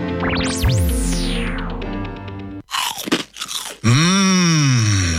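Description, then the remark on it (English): Loud crunching bites on Penny's Crispy Pork Crackling, slow-cooked for crunch, a quick cluster of crackly chomps lasting about a second, framed by swooping synthesized tones and sweeping electronic effects in an Australian radio advert. “Penny's Crispy Pork Crackling is slow-cooked for that big crunch and taste.”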